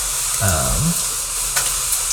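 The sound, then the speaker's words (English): Food sizzles steadily in hot oil in a cast-iron pan, a continuous crackling hiss with faint pops throughout, while a voice briefly hums or murmurs near the start. “They get super drenched in, like, oil and stuff, so you gotta dry it off.”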